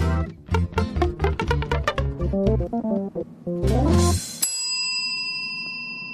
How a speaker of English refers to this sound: God, what a difference that bell makes, isn't it? That's the real thing.